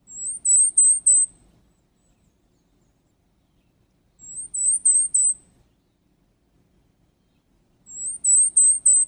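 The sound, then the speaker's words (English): A Cape May warbler (Setophaga tigrina) sings three short bursts of very high, thin notes, each burst a quick series of about four seets, separated by pauses of a few seconds, clear against quiet. “Here's our bird's high-pitched song.”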